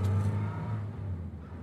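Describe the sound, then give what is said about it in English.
An old car's engine rumbles as it pulls away, a steady low drone with a slight rev that eases off over a second or so. No voices. “Do you think your car will make it?”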